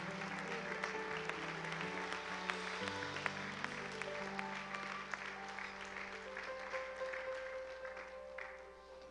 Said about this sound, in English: Amen. Amen. Come on, let's give Jesus a big hand aplauso clap. Al Señor.